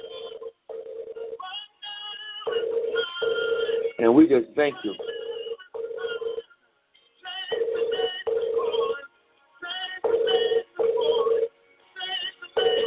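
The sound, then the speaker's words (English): A telephone rings in repeated bursts from incoming calls, with short gaps between them, steady and fairly loud, while a person speaks briefly over the ringing partway through. “I got some calls coming in of people that join us in prayer right now. So you hear a little ringing in the background.”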